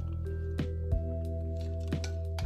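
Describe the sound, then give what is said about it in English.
Someone sips a drink, with a few small, quiet wet gulps and mouth clicks spaced out over a steady low hum. “Excuse me, let me take a sip here.”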